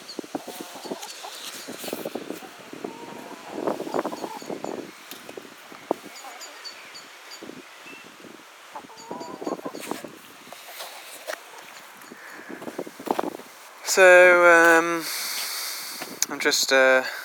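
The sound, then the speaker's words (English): Hens peck at the ground outdoors, making scattered soft taps and scratches, with quiet clucks throughout and a louder, drawn-out hen call near the end. “I've run out of treats for the hens, but they're still following me around, just pecking the ground, not doing anything too radical.”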